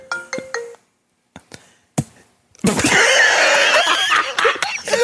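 A mobile phone rings for an incoming call with a quick three-note electronic chirp, followed by a few sharp clicks and then a burst of loud, raucous commotion that drowns everything out.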